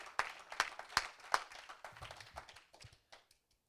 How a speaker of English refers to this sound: We ought to clap our hands and thank him for that right now. Hallelujah. Thank you, Jesus.